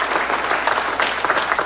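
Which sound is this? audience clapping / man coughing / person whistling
audience clapping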